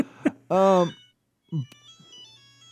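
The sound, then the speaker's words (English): A loud, drawn-out voice outburst, then a quieter old-school phone ringtone plays a thin, steady electronic trill for about a second at the end. “I literally get anxiety and like want to scream when I hear a ringtone”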